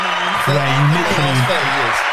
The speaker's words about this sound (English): You deserved every one of those claps. I can't lie for that piece of business.